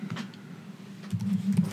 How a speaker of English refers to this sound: You're typing away.